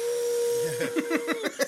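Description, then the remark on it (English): A blender whirs with a steady motor whine and airy hiss, then breaks into a quick series of rhythmic, chunky pulses as if chopping through something toward the end. “It has to be a blender in the build. There you go. Okay, blender.”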